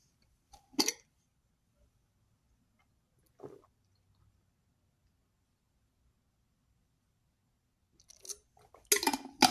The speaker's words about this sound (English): Let me just take a drink of water.